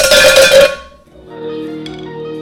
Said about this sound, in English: Got the speaker this time. Oh, yeah. The outro. Same song. Gonna bang it louder.